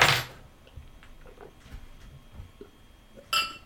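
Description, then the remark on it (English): A bottle of Alley Cat Amber Ale beer is opened and poured: the cap pops with a sharp hiss at the start, followed by soft clinks and faint liquid sounds, then a bright glassy clink near the end. No one speaks. “Hey, I'm going to open up the Alley Cat Amber Ale.”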